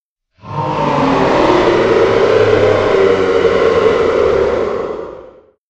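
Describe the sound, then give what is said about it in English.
A loud, sustained mechanical roar and whir of a ship's hyper-nocturnal drive powering up swells in quickly, holds steady for about five seconds, then fades out. No voices are heard. “The hyper-nocturnal drive is powering up again.”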